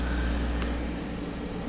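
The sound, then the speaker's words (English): A steady, unbroken whir of the cooling fans of two running computers, with a low tonal hum and a soft airy hiss above it, holding an even level throughout with no voices. “They are both on. Both of them have the fans running.”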